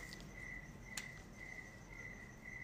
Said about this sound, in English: You hear the crickets? I really hope you can, because that is a beautiful sound that I don't get to hear at all over there in the States.